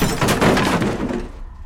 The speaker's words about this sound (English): And you guys suddenly get knocked out of the trance as the table gets flipped over.